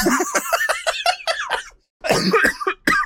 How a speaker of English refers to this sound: Oh God, I'm coughing. Maybe I have it.